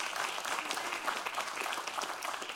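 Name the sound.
audience clapping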